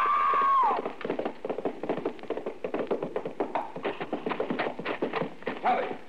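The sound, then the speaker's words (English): A high cry opens, then a horse's hooves pound in a fast gallop during a race, the beats dense and uneven as the horse stumbles over a lower bar at a corral gate and throws its rider. “We were racing. The horse stumbled over that lower bar and threw her.”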